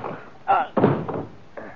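A sharp punch to a man's jaw lands with a heavy thud, quickly followed by a louder thump and scuffle as he is knocked down, then a softer knock trails off. Fairly loud, with no voices.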